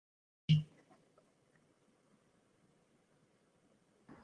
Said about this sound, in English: Sorry, we had a quick audio hiccup